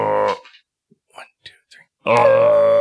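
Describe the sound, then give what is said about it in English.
People imitate an elk call with their voices: a short, loud groaning tone, a pause with a few faint scattered noises, then a long, loud droning call topped by a thin rising whine. “Does that sound like an elk, guys? It's not bad. I don't think it's super accurate.”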